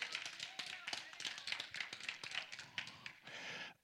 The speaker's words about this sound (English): Now, that was a 20% clapping. 80% still says.